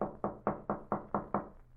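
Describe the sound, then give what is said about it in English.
Seven firm knocks on the wooden door of Buddy's room in a quick, steady rhythm, fairly loud, with no voices and only quiet room tone between raps. “Well, knock again, Mike.”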